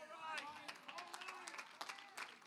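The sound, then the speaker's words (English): About seven scattered audience claps, sharp and uneven, ring out over a soft murmur of voices and crowd noise, never building into full applause. “Well, I got about 7 claps on that.”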